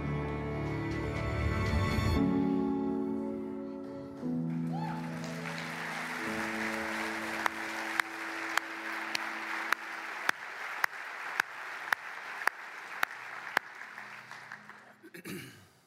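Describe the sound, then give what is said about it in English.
An audience breaks into sustained applause, a dense wash of clapping that swells and holds, while a low sustained musical chord plays underneath and sharp percussive hits punctuate the ending. “I'm going to just assume that you're clapping for two reasons.”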